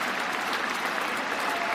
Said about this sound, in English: I think this applause may go on till lunchtime, actually. Wow, what a moment for Cook.